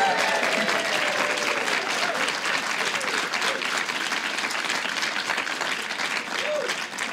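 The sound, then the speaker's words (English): A live audience at a show recording claps steadily for several seconds, a dense, loud wash of hand claps with scattered cheers and whoops mixed in, tapering only slightly at the end. “An enthusiastic crowd that knows what time it is in America.”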